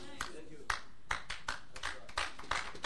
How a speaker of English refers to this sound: Go ahead and clap. Because it will do us good. It's a medicine. It's a healing.